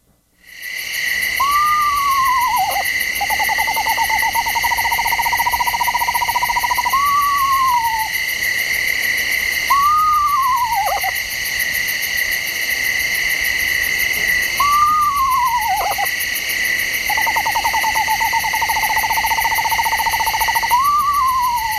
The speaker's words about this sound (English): So here's the screech owl. And by the way, screech owls don't screech. They never screech, so I don't know why they call them that. Okay. Eastern screech owl.